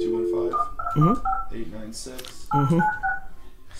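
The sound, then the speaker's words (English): A string of telephone keypad dialing tones as a phone number is dialed, several quick dual-pitched beeps in succession, fairly loud, with voices murmuring underneath. “Yeah, let's do a phone number.”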